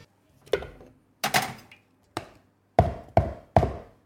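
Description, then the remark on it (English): A glass Coca-Cola bottle being handled: a series of sharp clinks and knocks with a brief ringing resonance, irregular at first, then three evenly spaced taps, with no one speaking. “I'm very excited by this glass Coca-Cola bottle.”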